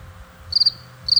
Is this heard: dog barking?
no